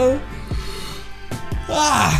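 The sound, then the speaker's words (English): A drawn-out human yawn, a voiced tone whose pitch slides and wavers before ending in a loud, breathy exhale, with no words spoken. “Hold on, I gotta yawn.”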